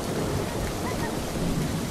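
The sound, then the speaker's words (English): A steady, dense wash of rain-like patter with low rumbling, a group collectively imitating a rainstorm and thunder, partly by quiet clapping, continuous throughout. “So we need a bit of rain and a bit of thunder.”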